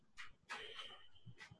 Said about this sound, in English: The first, by maybe a second or two, is the dog comes back.